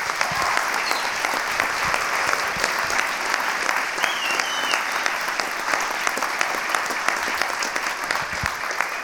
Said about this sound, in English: Why don't we all give an incredibly appreciative round of applause for all of these people who put this on, because wasn't it an amazing day?